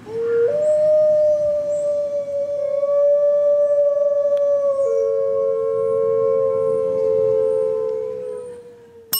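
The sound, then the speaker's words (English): A gray wolf howls in one long, sustained tone that holds steady, then dips slightly partway through, ringing clearly with no other voices. “That is a wolf, yes. Gray wolf.”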